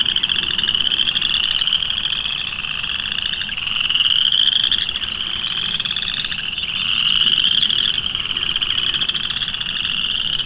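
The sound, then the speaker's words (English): A dense, continuous chorus of chorus frogs fills the air with overlapping high trilling calls, swelling and fading in loudness, with a song sparrow's notes barely audible beneath the din. “A song sparrow right in front of me, and you can barely hear him because of all of this chorus frog song.”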